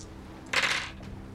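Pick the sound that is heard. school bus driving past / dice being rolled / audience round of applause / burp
dice being rolled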